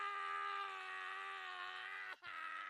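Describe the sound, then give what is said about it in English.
A person lets out a loud, sustained scream of frustration, holding one strained note for about two seconds, with a brief catch of breath before it trails on. “I feel like freaking screaming.”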